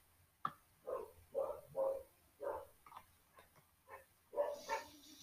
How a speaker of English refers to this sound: Oh, my dog's barking. Sorry. FYI, my dog's barking. So. If you hear stuff in the background, is my dog barking.